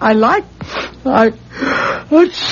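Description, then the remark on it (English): A series of loud, voiced sneezes, each with a rising 'ah' intake followed by a breathy, hissing burst, repeating about three times in quick succession. “God bless you.”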